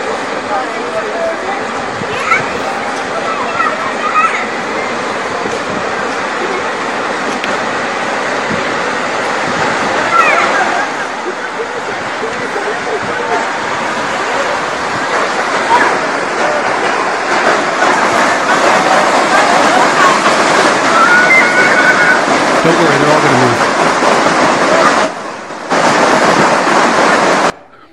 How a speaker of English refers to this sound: Well, anyway, it becomes a raging river, in case you're wondering. The video's a little longer, but it's pretty amazing that all of a sudden, when they pan back to the place that was bone dry, it's just raging, right?